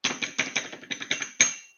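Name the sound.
hand slapping a table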